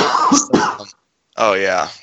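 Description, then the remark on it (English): A deliberate cough faked for ASMR: two harsh, breathy bursts close together, a brief pause, then a voiced, throaty hack, loud with no talking. “I just faked a cough for ASMR.”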